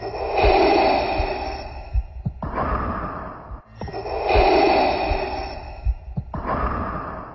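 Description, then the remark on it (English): Slow, rhythmic mechanical breathing through a scuba tank regulator, Darth Vader's breathing sound registered as trademark number 7741925: two full cycles of a hissing, rasping inhale followed by a breathy exhale, loud, with no talking. “Trademark number 7741925 is described as the sound of rhythmic mechanical human breathing created by breathing through a scuba tank regulator.”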